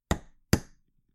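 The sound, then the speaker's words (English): Two sharp hammer blows on the head of a nail whose point is set in the center of a can's concave bottom, punching a drainage hole for plants, about half a second apart, each a loud bright metallic crack with a brief ringing tail and no talking. “In the concave bottom of the can, you want to place the point of your nail in the center and give it one firm hit with your hammer on the head of the nail.”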